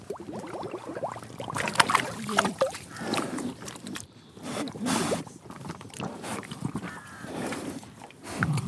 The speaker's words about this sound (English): And you can see how much they're loving the water. So, you know, just digging their great holes, muddy holes, yeah. blowing bubbles in the water trough. Just generally being... Well. Yeah, they stick That's their fantastic. Noses under the water.